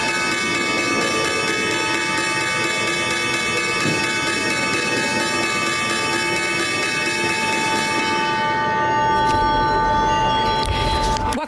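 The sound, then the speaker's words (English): The opening bell of the New York Stock Exchange rings loudly and continuously for about nine seconds over a busy, murmuring crowd, then stops as clapping and cheering swell. “You saw the opening bell there from the New York Stock Exchange, one of the last ones for a while.”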